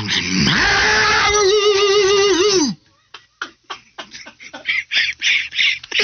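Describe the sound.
During a barking contest on Sports Radio 92.7 FM WFNZ, a man imitates a dog's bark with one loud, drawn-out, raspy howling bark that wavers in pitch for a few seconds, followed by scattered voices talking and reacting.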